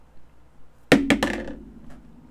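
Dice rolled by a player during a game hit a table with three quick, sharp clacks, then tumble in a brief rattle that fades within half a second. No one speaks, and the background is quiet.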